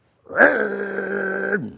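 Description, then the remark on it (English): A voice imitates a car with loud mufflers taking off on a bypass: one loud, gravelly, sustained low drone that kicks in with a surge, holds steady for over a second, then dips and cuts off. No other talk. “We were driving down the bypass yesterday, and this car took off with those beautiful sounding mufflers. I mean, he was getting on it.”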